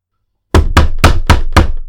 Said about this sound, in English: Knocking. Who is it?